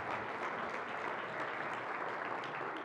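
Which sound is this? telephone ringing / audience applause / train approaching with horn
audience applause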